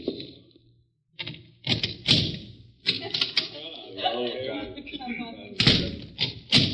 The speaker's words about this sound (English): Mr. Cochran knocking on a door at the end of the alley